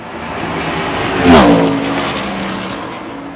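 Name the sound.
car driving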